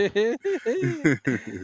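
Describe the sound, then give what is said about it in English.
A person imitates a chicken clucking with a quick run of short, pitch-bending vocal bursts, fairly loud. “Chicken.”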